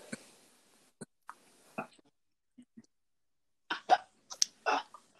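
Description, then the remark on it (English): Short, sharp coughs: a few scattered single bursts, then a quick cluster of harsher coughs near the end, with quiet gaps and no talking. “I hear one cough in the movie theater.”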